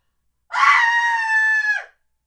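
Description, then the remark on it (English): A single loud human scream, sustained for over a second at a steady high pitch before dropping off abruptly, with no talking during it. “This is gonna, okay, here's the scream.”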